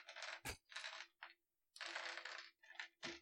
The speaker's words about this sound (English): Okay. What do I need to roll? A d20. I have one of those.